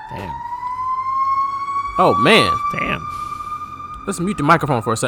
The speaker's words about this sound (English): Oh my God, what is going down right here in Westfield? Ooh. That is a fire truck.